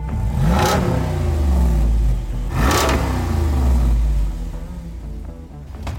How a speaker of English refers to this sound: This roided up 392, it's enough to pull the sunglasses right off your head. This is a muscle car engine in a Jeep.